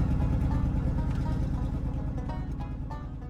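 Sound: pickup truck driving away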